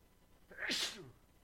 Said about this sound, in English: And I am about to sneeze.